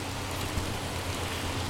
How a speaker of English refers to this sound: it is raining out right now. Opening the window from the top. So it doesn't rain too much here, but it's raining today.